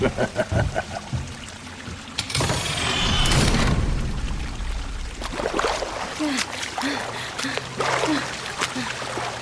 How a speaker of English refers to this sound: Dang it. No other way out of here. That water's rising fast.